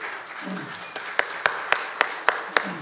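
A church audience applauds in a steady wash of clapping, with a few sharp, evenly spaced claps standing out as it builds over a few seconds.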